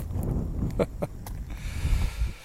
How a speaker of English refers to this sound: Thanks for enduring the windy conditions. Thanks to what remains of Hurricane Nicole.